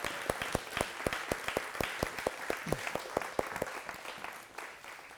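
A church crowd breaks into steady applause for a day of baptisms at Alamoana Beach Park, many hands clapping in a rapid, uneven patter that holds at a moderate level for several seconds before tapering slightly toward the end.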